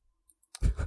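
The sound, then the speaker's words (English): A handful of dice rattle and tumble across a tabletop: a few faint ticks, then a sudden dense clatter that fills the last half-second, fairly loud. “So many dice.”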